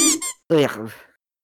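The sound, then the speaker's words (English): A squeaky toy hammer hitting someone on the head squeaks twice in quick succession: a short, bright, high-pitched double chirp, then a longer, louder squeal that wavers and slides downward before fading out. “While Pan is turned around, Clark swiftly grabs his squeaky hammer and mashes him in the noggin.”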